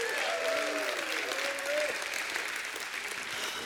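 crowd, audience applause

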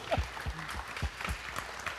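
crowd, audience applause and cheering

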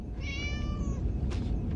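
animal, cat meowing

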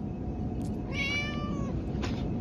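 animal, cat meowing

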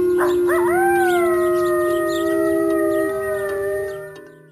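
animal, wolf howling

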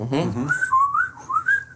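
human body sound, person whistling

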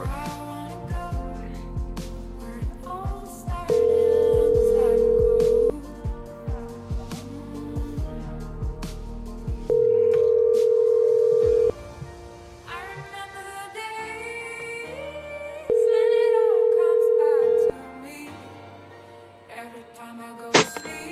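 signal or alarm, telephone ringing

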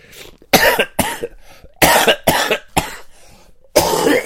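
human body sound, repeated coughing

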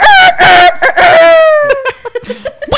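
bird, rooster crowing

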